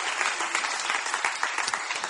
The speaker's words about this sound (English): And as you're seated, give God a good hand clap of praise and honor him for his word.